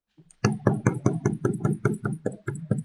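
A rapid series of heavy, pounding knocks on a door at 2:30 in the morning, about a dozen blows in quick succession, loud, with no voices.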